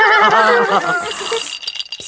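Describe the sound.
A rocking horse's high, quavering whinny rises and wobbles for about a second, then fades into light rattling and clicking, fairly loud, with no talking.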